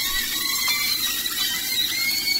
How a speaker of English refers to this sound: You know what? Frying sausage. I hear good screams. I hear the screams of joyful children on the playground, like running for the play equipment.